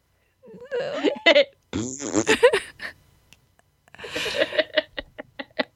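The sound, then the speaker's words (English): A voice mimics a fart with a few drawn-out, sputtering blown-lip bursts, followed by a run of quick, rhythmic puffing spurts. No words, just the mouth-made raspberry sounds. “Until he farted and then he felt better.”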